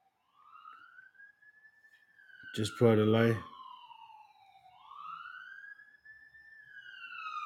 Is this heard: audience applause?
no